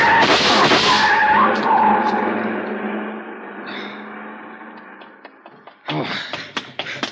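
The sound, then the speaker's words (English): A long black coupe with a lot of chrome, its lights off, tears away with a loud screech of skidding tires, the roar fading steadily, followed by a few sharp clicks and knocks. “The car. See the car. The one that just gunned out.”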